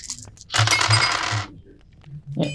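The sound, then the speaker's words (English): A burst of hard clattering as dice tumble and rattle across a table for about a second, followed by quieter rustling. “That's 7 5, dice, bitches.”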